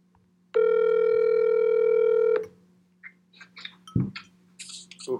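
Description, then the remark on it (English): A steady telephone dial tone holds for about two seconds, then a quick series of short dialing beeps follows as someone dials a call, with a low constant hum underneath. “I'm gonna call him.”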